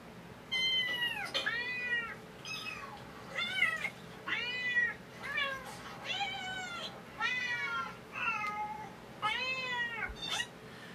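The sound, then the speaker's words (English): A cat meows repeatedly, about eight or nine drawn-out, wavering cries in quick succession, fairly loud, with no talking over them. “International Cat Day. Kitties.”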